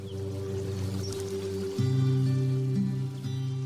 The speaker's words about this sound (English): As they get washed away by the sound of the water.